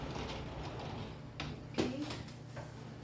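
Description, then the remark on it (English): A door is shut with a solid clunk, preceded and followed by a couple of lighter knocks, all over a steady low mechanical hum in a quiet room. “We close the door and I get myself prepared.”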